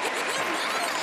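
A brief burst of applause, many hands clapping in a dense, steady wash of crackling noise that holds at an even loudness for about a second.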